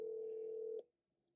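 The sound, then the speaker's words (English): A single steady electronic phone tone of an outgoing call to a caller ringing out on the line, holding clearly for under a second and then cutting off into near silence. “Let's see if Shelby will answer her phone”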